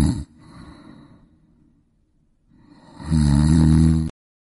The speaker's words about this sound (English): It's the snore of the week for sure